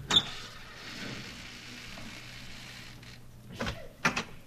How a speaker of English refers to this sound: Here we are, the Von Schuler estate. Come on, we'll go in through the front door. I'll open it.